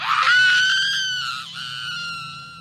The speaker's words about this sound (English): This thing submerged her underwater, but she was able to kick it off, and she popped up to the surface, taking a huge breath, then screaming her lungs out.